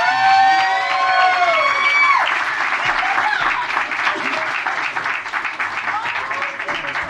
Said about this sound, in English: Portland Comedy Staple, so goddamn funny, and gracing the stage right now. You guys are in for a treat. Give a round of applause for the hilarious Anatoly Brandt!